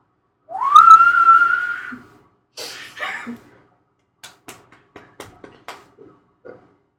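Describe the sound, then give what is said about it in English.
A person whistles one sustained, upward-sliding note for about a second and a half, clear, as the hook of a well-known song. It is followed by a breathy rustle and a string of light taps or clicks. “He can just loop that my whistle.”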